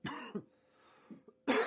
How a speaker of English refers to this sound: All right. Jeez, of course. All of a sudden, now I get a cough.